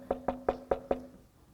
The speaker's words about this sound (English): What if he was knocking? If anyone hears me, implying that you have to hear the voice of God. You have to hear him knocking on the door.